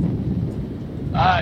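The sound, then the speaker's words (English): Low, steady thunder rumbles throughout, a deep continuous roll filling the background, with a brighter burst of sound rising over it just before the end. “My God, now I feel like I'm in a thunderstorm.”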